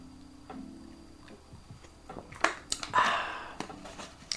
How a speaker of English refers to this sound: Excuse me while I sip some of this Pure Life H2O.